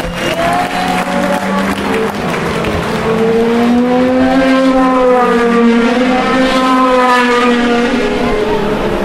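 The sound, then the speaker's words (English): Race cars, two Toyotas followed by an Audi, drone past on the warm-up or parade lap at Le Mans, their whining tones rising and bending in pitch as each car goes by, loud and continuous over a steady wash of crowd noise. “Those last two were two Toyotas followed by an Audi as the cars do the warm-up or the parade lap.”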